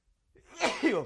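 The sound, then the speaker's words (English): A single sneeze: a brief rising intake of breath, then a sharp noisy burst that trails into a voiced, breathy tail. Moderately loud, with no talking. “A profound spirit sneeze as I'm reckoning with this quilt maker metaphor.”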